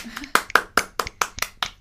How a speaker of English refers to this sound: I did golf clap.